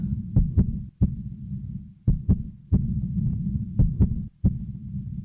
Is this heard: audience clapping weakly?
no